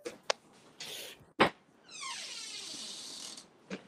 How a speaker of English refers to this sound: My cat's scratching at the door.